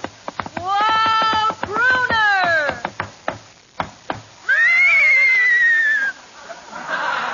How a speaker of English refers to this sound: Hey, Abbott, there's somebody riding into the studio on a horse.